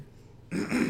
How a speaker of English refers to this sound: You see the short boy king clearing his throat, a look of annoyance on his face.